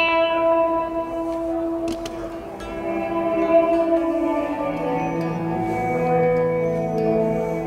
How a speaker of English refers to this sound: But yeah, just straight into the amps. Mm. And that hard wire is basically just set on a reverse reverb.